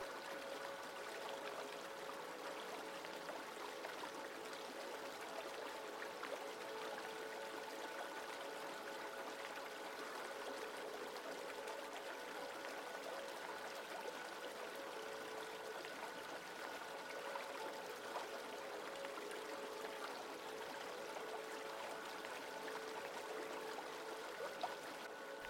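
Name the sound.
flowing river stream water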